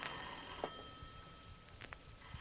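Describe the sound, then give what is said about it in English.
A telephone rings with a steady electronic tone that holds through the whole moment without stopping, heard faintly, with a few soft clicks and knocks in the background and no voices. “Again the phone. This time, it doesn't stop.”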